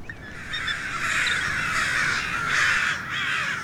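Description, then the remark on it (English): A chorus of crows cawing continuously, harsh overlapping calls from several birds, loud and steady throughout with no talking. “Crows Everywhere!”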